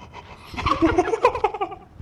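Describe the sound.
Heavy panting with ragged, voiced gasps for air, several quick strained breaths running together over about two seconds.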